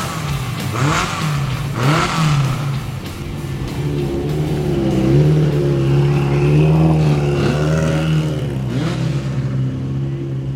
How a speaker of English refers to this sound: Yeah, I mean, barely in the 59, so hopefully today we can go a little quicker, but keep the car in one piece. It's good fun, but it's quite edgy up here, but it's 800 horsepower.